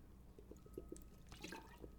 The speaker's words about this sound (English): Speaking of which, I'm drinking from a plastic bottle right now.